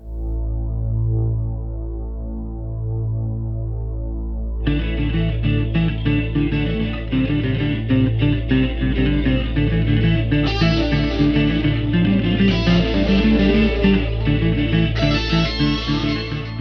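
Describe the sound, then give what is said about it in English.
A deep, buzzing bass synth drone resembling a didgeridoo throbs steadily on its own for a few seconds, then a fuller band sound with bass and guitar joins over it and continues. “So I suppose from that impression, it's a cross between a didgeridoo and a bass synth.”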